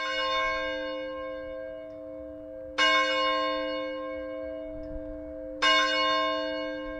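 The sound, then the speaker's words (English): The large bell of St. Peter's Episcopal Church in Sitka tolls slowly and steadily on a Tuesday afternoon, rung 300 times over 15 minutes by tugging its heavy rope, each strike ringing out with a rich, sustained hum that overlaps the next, about three seconds apart, with no voices. “Peter's Episcopal Church in Sitka joined the National Cathedral and churches around the country and rang its bell 300 times on Tuesday afternoon.”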